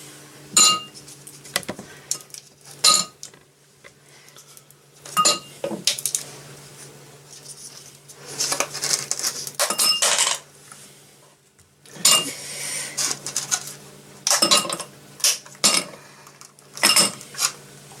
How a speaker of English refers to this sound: So here goes. Ouch. She's hurting her hands getting the ice cubes out. No, they're still there. Oops.